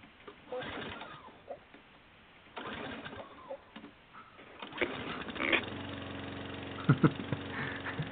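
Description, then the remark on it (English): Birds coo faintly outdoors, then about halfway through a small lawn mower engine starts up and drones steadily and fairly loud, with a few sharp bumps near the end. “And he's just going to be talking away at you while he's mowing the lawn.”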